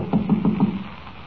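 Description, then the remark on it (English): Four evenly spaced knocks rap on a locked stage door, dull and woody with a firm low thud, followed by a brief quiet pause with no voices. “The door seems to be locked.”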